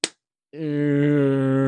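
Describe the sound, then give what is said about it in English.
One sharp slap of a palm against a wooden surface, then a brief silence before a steady, sustained humming tone starts and holds to the end. “As you guys are staring at the door and you hear a slapping sound, it sounds like a palm hitting wood.”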